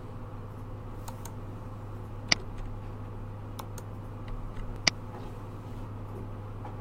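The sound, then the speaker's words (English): Two crisp mouse clicks a couple of seconds apart, with a few fainter ticks in between, over a steady low electrical hum and no talking, as documents are selected and deselected for upload in SharePoint. “I can also deselect them by clicking them a second time.”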